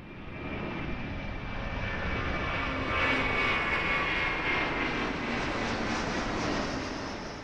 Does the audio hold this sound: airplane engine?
yes